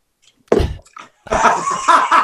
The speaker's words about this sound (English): Spit out my water.